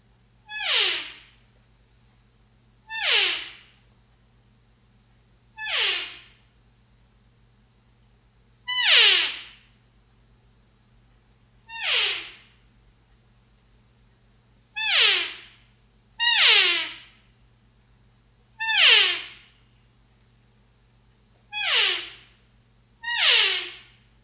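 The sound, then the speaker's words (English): A Trophy Wife external reed elk call blown about ten times, each a short, high, squealing mew that slides sharply downward in pitch, with brief pauses between and no talking. “I want to demonstrate for you an elk call”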